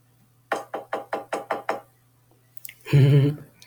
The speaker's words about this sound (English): But, you know, there's nothing wrong with that. Nothing. Nothing's wrong with knocking on wood.